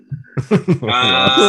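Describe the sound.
A person vocally imitates a pig, with a few short grunting bursts that rise into a loud, sustained, high-pitched squeal.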